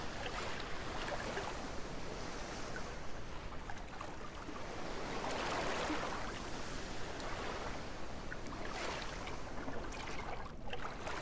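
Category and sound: nature, ocean waves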